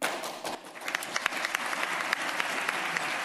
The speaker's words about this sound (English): I'm always intrigued by the way applause happens in these events. You know, it's like one guy, yeah, no, no. And then everybody's like, oh, yeah, all right, fair enough, sure. We're with you. We're with you.